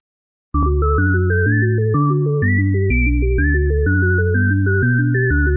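A loud, melodic phone ringtone plays a steady synthesized tune of stepped tones over a heavy bass line, looping continuously for several seconds with no voices.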